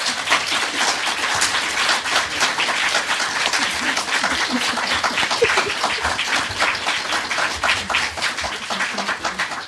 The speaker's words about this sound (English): I think it's such a nice idea to end on a positive note. So I'm going to say, can you give our panelists a big round of applause?